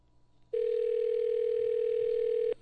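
A steady telephone dial tone of an outgoing call sounds for about two seconds, a single unbroken mid-pitched hum with faint buzzy overtones, starting and stopping abruptly over quiet background.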